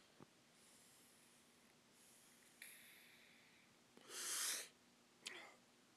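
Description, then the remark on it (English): A breathy inhale of Strawberry Cough cannabis smoke, a single airy pull lasting under a second, framed by a few soft clicks and light mouth sounds, otherwise quiet. “Just took another hit of that freaking strawberry cough.”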